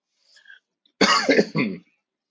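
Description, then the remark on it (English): A couple of loud, harsh coughs in quick succession, preceded by a faint breathy sound, with no talking. “I'm sure I'm not supposed to cough while recording my first podcast, but hey, I just did.”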